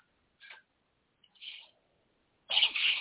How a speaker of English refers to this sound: bless you. Thank you.